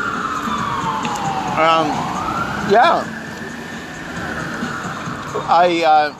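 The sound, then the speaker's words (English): A fire truck siren wails steadily as it goes away, its pitch sliding down and then back up as it carries on. Short bursts of a person speaking briefly cut in over it. “Just ambulance goes away. A fire truck, sorry, fire truck.”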